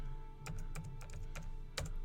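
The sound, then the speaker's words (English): Irregular keystrokes clatter on a computer keyboard, about six sharp clicks spread over two seconds, over a low steady hum, with no voices. “See, it's your season of harvest, so I'm typing it down.”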